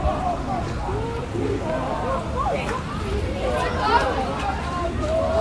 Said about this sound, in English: A few people without tickets around the ground, young people singing United fans, singing United songs around me. Getting a bit lively.